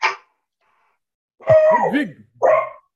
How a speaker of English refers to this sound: Yeah, if we could not make all the scary noises, then we won't make the dog bark, okay? But we don't want the dog barking during this, okay?